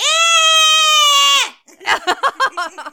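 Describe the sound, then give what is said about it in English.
A mini screaming goat toy, a goat figure on a tree stump, is pressed and lets out one loud, sustained, strained scream lasting over a second, cutting off abruptly, followed by a string of short, choppy vocal bursts. “I do have, for only £6.55, the mini screaming goat kit. Here's what it sounds like.”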